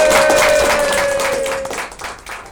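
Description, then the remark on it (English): A crowd applauds with dense, crackly clapping that sounds slightly distorted, with a faint sustained tone running through it, then thins out and fades over a couple of seconds. “And so, as the badly recorded applause fades into the background”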